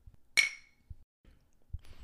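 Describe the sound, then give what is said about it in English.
A single bright clink of glasses of Bloody Mary touching in a toast, ringing briefly before fading, followed by a few soft low thumps and faint shuffling. “Cheers.”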